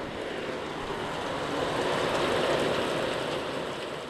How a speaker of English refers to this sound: When I recorded these, I was in a rehab called the Plymouth House in the mountains of New Hampshire. Rain in New Hampshire.